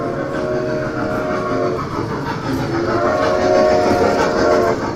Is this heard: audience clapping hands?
no